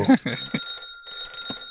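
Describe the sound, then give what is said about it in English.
A telephone rings with a steady, high electronic trill that holds for the whole moment, while brief bits of voice break in at the start and again near the end. “I will put my receiver in my ear to answer the phone.”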